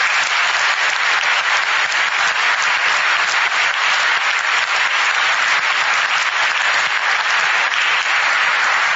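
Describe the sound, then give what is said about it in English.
An audience applauds steadily at the end of a debate speech, a dense wash of many hands clapping at an even, loud level with no voices breaking through. “round of applause.”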